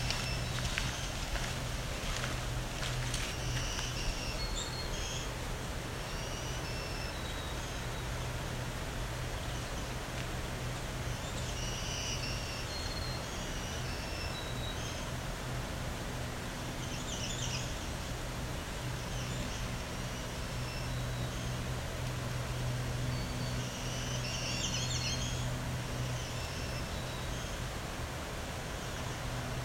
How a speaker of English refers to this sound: Follow this bird with an interesting variation. Now, the other possibility, this is a blue warbler, a black-throated blue. They do have similar voices.